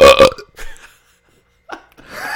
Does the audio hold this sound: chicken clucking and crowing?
no